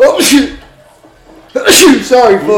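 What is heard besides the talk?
sneeze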